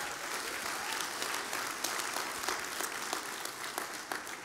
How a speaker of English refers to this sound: We're so grateful. You can clap. Thank you, Lord.